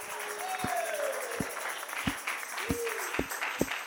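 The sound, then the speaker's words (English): An audience claps, with a dense wash of applause under sharp, evenly spaced claps about every half second, while voices call out over it. “There ought to be some older people clapping.”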